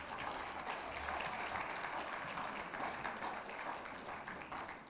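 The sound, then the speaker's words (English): An audience breaks into sustained applause for the teens, many hands clapping in a dense, steady wash that holds at an even loudness for about five seconds, with no voices standing out. “Can we just offer up a round of applause for the teens?”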